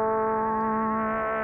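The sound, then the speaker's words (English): An FM synthesizer that imitates a DX7 plays its LFO sweep sound, a steady, buzzy tone holding one low pitch at an even volume, its bright harmonics wavering slightly as if swept by a slow modulation, giving a crunchy, 8-bit character. No voices. “It's got some crunchy... It does. It sounds very 8-bit.”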